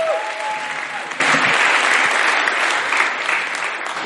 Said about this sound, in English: Let's give her a massive round of applause as she comes.